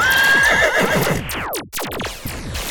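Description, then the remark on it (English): A horse, the last one left, lets out a loud, shrill whinny that falls away into snorts, followed by the quick thudding of hooves galloping off, with no voices. “And there goes the last horse.”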